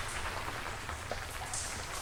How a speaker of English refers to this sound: Is it raining? That's just a rock slide. It happens in the mines. Just a rock slide.